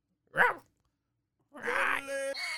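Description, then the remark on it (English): A person imitates a dog: one short bark-like yelp, a pause, then a longer strained, groaning howl that rises into a steady tone. Fairly loud, with no talking. “Why were you just barking just now?”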